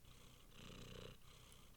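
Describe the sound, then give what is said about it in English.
A female cat purrs in a steady, rumbling rhythm, swelling slightly louder in the middle before settling back, with no talking over it. “She gave it 5 out of 5 because she's a cat.”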